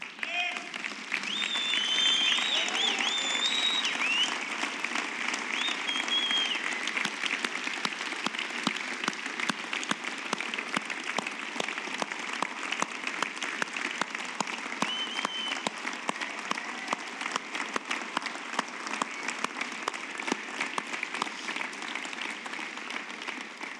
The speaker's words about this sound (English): And I wonder if we can't just take another moment to just stand and give these guys a massive round of applause.